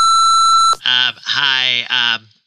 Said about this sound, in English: At the beep. Leave a message.